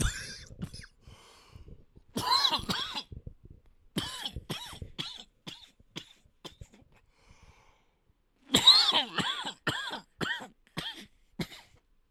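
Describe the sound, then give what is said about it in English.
Several harsh coughs come in short bursts, grouped into a few bouts separated by brief pauses, with some throat-clearing. The final bout is the loudest, and no one speaks. “A little cough out of nowhere.”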